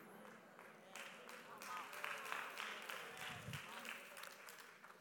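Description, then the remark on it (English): Soft, quiet hand clapping from an audience, a dense patter of many light claps that builds after the first second and continues steadily to the end, with faint murmuring underneath. “Those were real soft hand claps right there.”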